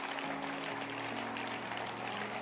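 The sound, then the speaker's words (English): A crowd at a service claps steadily for the instrumentalists, a dense wash of many hands at a constant, fairly loud level throughout, with a low sustained tone humming underneath. “So let's clap our hands for them.”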